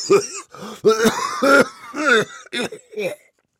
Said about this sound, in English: Jack coughed into a handkerchief, belly-ripping Doc Holliday kind of coughing.